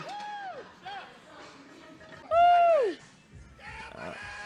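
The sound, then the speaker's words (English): A man lets out a loud, strained yell lasting under a second while lifting weights, preceded by a shorter, quieter shout, with murmured voices and background noise around it. “Yeah, the screaming is intimidating.”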